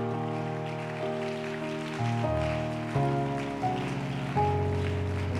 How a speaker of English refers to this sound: Go ahead and clap your hands, all you people, and shout unto God with a voice of triumph.